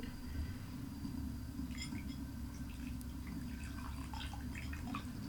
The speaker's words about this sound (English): Yeah, I'm still wrapping my brain around how the force at which you pour doesn't affect the thinness and the thickness of the water stream. But people will see in the video that it is the same.